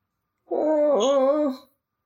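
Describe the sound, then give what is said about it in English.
A person imitates a whimper: one drawn-out, high, wavering whine lasting about a second, dipping in pitch midway before trailing off, fairly loud, with silence around it. “Starts whimpering.”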